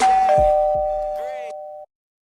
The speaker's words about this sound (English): Hello, I was waiting for that ding dong, so thank you.